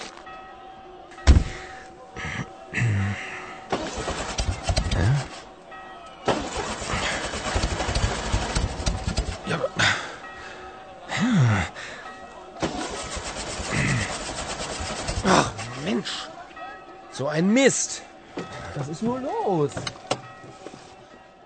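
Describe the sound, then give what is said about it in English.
A car engine cranks repeatedly without catching as someone tries to drive off in the car: several strained whirring attempts separated by pauses, with clicks and thunks in between and the angry driver muttering. “Someone wanted to drive off in his car. The car didn't start.”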